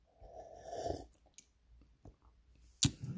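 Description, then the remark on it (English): A drawn-out airy slurp of hot mint tea lasting under a second, followed by faint swallowing clicks and one sharp click near the end, with no talking. “Excuse me, sipping some mint tea.”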